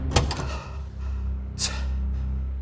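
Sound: door opening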